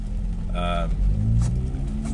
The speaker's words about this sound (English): Then you've got the sound of the car engine.